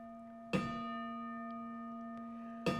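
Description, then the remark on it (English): A clock solemnly strikes three with deep, resonant bell tones, two strokes heard about two seconds apart, each hum ringing on steadily into the next, with no voices. “The mourner sprang forward as the clock solemnly struck 3.”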